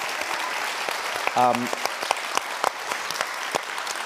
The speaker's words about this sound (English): He's a really great guy, and I'd love it if you could all give him a little round of applause.